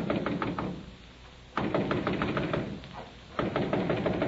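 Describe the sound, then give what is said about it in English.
Three bursts of rapid, firm knocking on the door of a flat on Kingsland Avenue by a federal agent during an early-morning raid, each a quick series of sharp raps separated by short pauses, fairly loud with no voices. “Who's there? Officer Primrose, I want to talk to you.”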